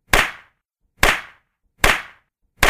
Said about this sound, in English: You think I'm going to pretend to slap his head, don't you?